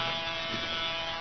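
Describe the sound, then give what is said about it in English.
A bumblebee buzzes around a person lying in a hammock, circling for a landing, in a steady, unbroken drone with a bright, raspy edge, holding at an even loudness for just over a second with no voices. “Go away, bee, go away. Looks like he's circling for a landing.”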